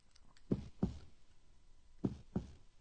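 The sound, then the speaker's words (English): Two pairs of dull, solid knocks, like knuckles rapping on a wooden door, each pair quick and evenly spaced with a short pause between pairs, moderately loud, no voices. “That's someone knocking.”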